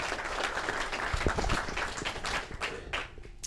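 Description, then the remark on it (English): A crowd breaks into steady applause welcoming guest Kyle McClellan, many hands clapping at once in a dense, sustained patter that holds fairly loud for a few seconds before easing slightly toward the end. “So let's have a warm round of applause and a warm welcome for Kyle McClellan.”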